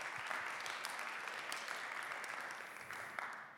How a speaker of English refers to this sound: Can we clap it up for the worship team for leading us into the Spirit?